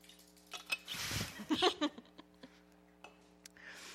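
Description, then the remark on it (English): A speaker pauses a Bible talk to drink water from a glass: a soft rustling swish, then a few bright clinks of glass, followed by scattered small clicks over a steady low hum. No one speaks. “Pause for water.”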